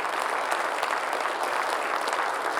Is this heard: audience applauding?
yes